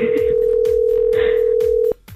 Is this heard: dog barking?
no